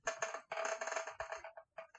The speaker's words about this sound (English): So, that would be... Let me roll these dice.